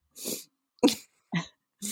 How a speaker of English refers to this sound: It's cold weather makes me sneeze.